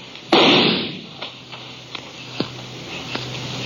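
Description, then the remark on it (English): A loud, sharp gunshot rings out in a canyon, followed by several fainter, irregularly spaced cracks that echo off the rock walls. “His gunfire gave me a pretty good notion where to aim.”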